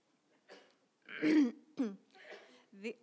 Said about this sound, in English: bless you.